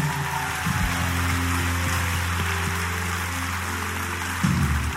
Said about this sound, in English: For all of those who just placed your faith in Christ, first of all, let's clap our hands one more time for them.